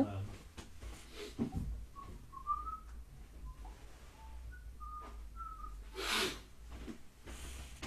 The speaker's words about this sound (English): I'm just opening the doors a sec.